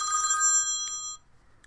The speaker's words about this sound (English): The phone's ringing. Where is the phone? Here, it's right here.